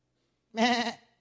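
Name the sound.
sheep bleating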